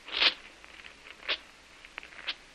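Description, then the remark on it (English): A written paper being torn up in three short, rasping rips spaced about a second apart, with faint crinkling between them. Quiet, with no voices. “So I tear up the paper and burn it.”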